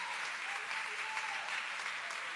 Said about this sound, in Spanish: Denle un fuerte aplauso al Señor con el corazón.